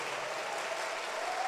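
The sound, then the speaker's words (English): Steady applause from a conference audience acknowledging Lady Pastor Marian, wife of Bishop Ogo: a dense, continuous wash of many hands clapping at moderate volume without any voices standing out. “Oh, clap your hands for Lady Pastor Marian.”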